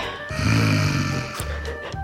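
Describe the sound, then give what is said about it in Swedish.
A man imitates snoring: a long, rattling, throaty inhale followed by a shorter second snort-like breath, loud and alone with no talking. “Han snarkar.”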